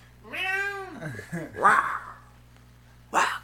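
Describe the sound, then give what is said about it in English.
A cat meows loudly in a studio, one long drawn-out meow followed by a couple of shorter mews, with a steady low hum in the background. “We got a cat in the studio.”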